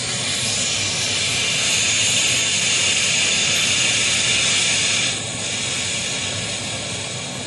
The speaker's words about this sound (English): Rubber boat all spread out. All right. Puncture the compressed air capsule.